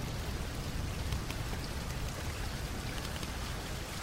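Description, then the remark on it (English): Steady rain pours down in a dense, continuous hiss, with scattered drops pattering on a hard surface. No voices, just the even, unbroken wash of rainfall throughout. “There's red lights flashing around you, these old-timey sirens going off, and then it starts to rain.”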